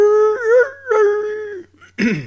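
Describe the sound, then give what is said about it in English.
A human voice mimics coyote howls with two long, wavering, mid-pitched wails that rise and dip, then a short, rough, breathy burst at the end. “I hear coyotes.”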